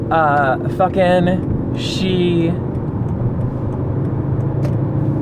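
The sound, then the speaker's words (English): A steady, low engine rumble from a car idling in slow traffic in Los Angeles, stuck behind a truck, with muffled voices briefly heard over it in the first couple of seconds before the drone continues alone. “We are stuck behind a truck somehow.”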